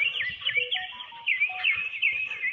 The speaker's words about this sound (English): Oh, my phone's beeping at me.